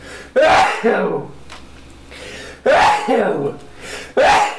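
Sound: sneeze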